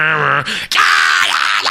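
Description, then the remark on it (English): A man's voice mimics black metal screaming: a harsh, strained groan that breaks off, then a long raspy, high shriek held loud to the end, with no words. “But you never know the fucking quality of it, because there's just some random jackass that can go something screaming and all that bullshit.”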